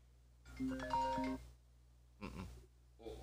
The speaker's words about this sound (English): What? The phone. Oh. The phone was ringing.